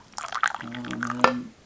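A drink is poured into a glass, with splashing, gurgling liquid and a low resonant hum as it fills, plus a brief sharp clink near the end.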